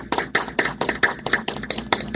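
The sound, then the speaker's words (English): Steady applause at a wedding for a newly married couple, with hand claps landing in a quick, even rhythm, roughly seven or eight sharp bursts over a couple of seconds, moderately loud with no voices. “And ladies and gentlemen, may I present you Mr. and Mrs. Hill. Ladies and gentlemen, applause.”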